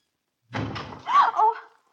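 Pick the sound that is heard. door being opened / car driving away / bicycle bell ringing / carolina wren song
door being opened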